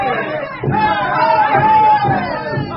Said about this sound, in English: the thoughtless kids eagerly snatched up the waiting placards and signs to start the demonstration on the campus. For an hour, Stephanie and I watched from the background as the shouting, chanting students paraded on Faculty Row.